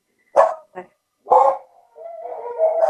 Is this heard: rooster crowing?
no